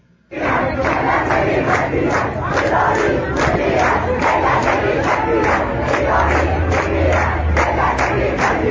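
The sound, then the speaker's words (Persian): A large crowd in Hamadan, Iran, protesting over water, chants slogans in unison, loud and continuous, with a steady rhythmic pulse of shouted syllables repeating throughout. “این شعارا دو تا یک قرونی ارزش نداره.”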